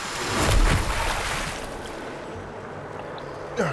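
A geyser erupts from the center of a lake: a loud burst of gushing water surges up, then keeps rushing steadily in a dense, spraying roar before easing off slightly near the end.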